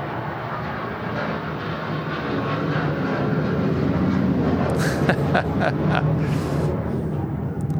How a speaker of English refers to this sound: Sorry, we got a fighter jet flying overhead.